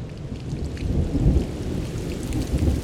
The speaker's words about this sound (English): A huge storm is incoming, and it is highly advised to stay inside for your safety. Do not venture out alone.